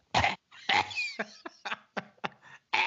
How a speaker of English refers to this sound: Dim the lights. I'm coughing in the audience to give me a hint.